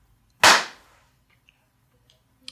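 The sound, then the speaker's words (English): A single sharp hand clap marking the second take of a recording rings out loudly on its own with a quick decaying tail, followed by a few faint clicks and rustles in near silence. “And so this is our, going to be our second take. All right, second clap.”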